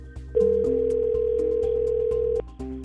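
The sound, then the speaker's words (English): A telephone on a Samaritans helpline rings with a single steady electronic tone held for about two seconds, loud, over a low pulsing rhythmic background. No one speaks. “The phone's going to ring again.”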